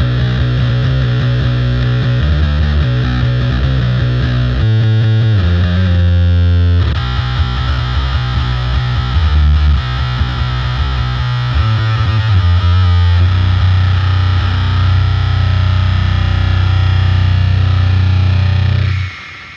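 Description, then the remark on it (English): Heavily distorted electric guitar plays loud, saturated riffs with chugging low notes and sustained buzzing chords, dense throughout with no talking. “Definitely a lot of distortion going on here.”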